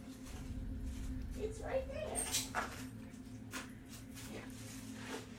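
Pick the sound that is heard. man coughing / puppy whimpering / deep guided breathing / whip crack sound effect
puppy whimpering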